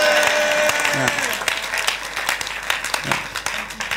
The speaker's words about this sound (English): In the name of Jesus. Clap your hands and shout a big amen.